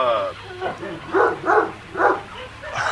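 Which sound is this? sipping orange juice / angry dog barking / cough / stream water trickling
angry dog barking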